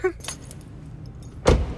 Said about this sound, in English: Okay, so for those of you that aren't watching the video, and right now I was getting out of the car.